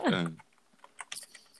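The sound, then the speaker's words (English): A brief burst of voice gives way to rapid, clattering computer keyboard typing, a quick run of sharp key clicks at moderate volume. “Hear him typing. Machine gun typing here.”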